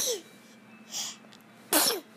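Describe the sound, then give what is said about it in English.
A few quick, breathy sneezes in a row, the last one the loudest and sharpest, each a short hissy burst with quiet pauses between. “The sneezing.”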